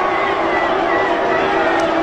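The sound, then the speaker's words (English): A large crowd roars and cheers steadily at a Donald Trump rally in South Carolina, a dense, continuous wash of many voices with no breaks, loud throughout the short stretch. “Wow, listen to that crowd.”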